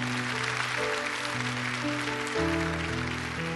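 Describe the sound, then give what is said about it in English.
An audience gives a clap offering for people who raised their hands, in a dense, steady wash of applause that never lets up, while sustained organ-like chords hold underneath and shift to new notes partway through. “Give these people a great big clap offering and tell them you love them.”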